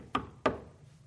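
Two sharp knocks on a door, about a third of a second apart, each with a short resonant decay, followed by quiet.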